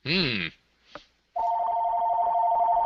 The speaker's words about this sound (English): My phone is ringing. We'll just have to put up with that.